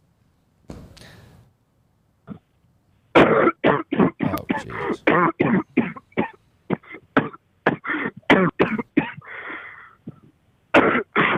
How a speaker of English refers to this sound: It was a guy coughing